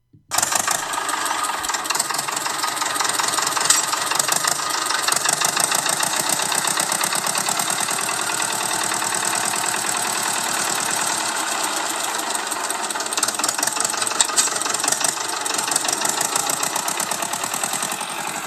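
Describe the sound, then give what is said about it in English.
An old tractor engine idles steadily, a continuous throbbing rumble with a rough, knocking rhythm that holds evenly for the whole stretch with no voices. “Okay, so we've got a selection of old tractor sounds in the background.”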